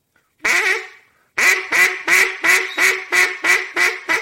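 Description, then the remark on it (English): A duck call blown to imitate a hen mallard: one drawn-out quack, a pause, then a rapid, evenly spaced series of about eight loud, raspy quacks, clear. “You're blowing a little harder when you go to blow your hens.”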